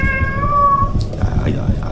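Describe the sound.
A cat lets out one drawn-out, close meow over a low rumbling background, followed by indistinct muffled voices.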